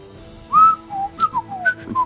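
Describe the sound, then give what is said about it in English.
A person whistles a bird-call imitation: a string of short, high, sliding chirps and warbles, rising and falling in pitch, fairly loud over a low background hum, with no talking. “We should all do bird sounds while she says end of episode.”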